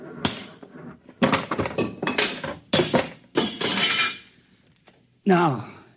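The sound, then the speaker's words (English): A big machine that controls a buzzer is smashed with a series of heavy, irregular blows, each loud crash clattering and ringing with metal, about seven in all, before a short vocal sound at the end. “This is the machine that controls the buzzer. Just a simple machine like that? Yes, a simple machine. Stand back.”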